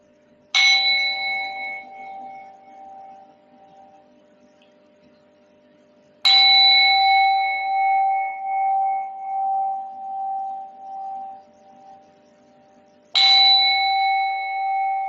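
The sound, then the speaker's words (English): A meditation bell is struck three times to end a meditation session, spaced several seconds apart, each strike ringing out clearly with a bright metallic tone and a long shimmering decay into quiet. “So now I am going to ring the bell. So when I ring for the third time, you can come out of the meditation.”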